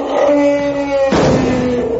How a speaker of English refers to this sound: Actually, that was Tiny the elephant, part of the Noah's Ark display.